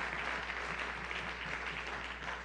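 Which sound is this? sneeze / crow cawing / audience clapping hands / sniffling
audience clapping hands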